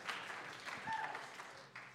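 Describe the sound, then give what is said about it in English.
A crowd applauds the student union, a dense, steady wash of many hands clapping together at an even level throughout, with a few faint cheers or voices mixed into the noise. “Great applause.”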